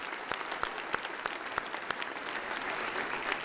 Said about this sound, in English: All right, that was wonderful. Give them another round of applause as they make their way out the door, yeah.